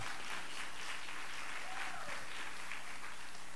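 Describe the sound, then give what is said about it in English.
A church audience claps steadily to welcome a speaker as she comes across the front, a dense wash of many hands with no pauses, holding an even level throughout and carrying no talking over it. “Give her one more hand clap as she comes across the front now.”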